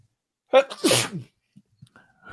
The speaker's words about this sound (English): I got to sneeze.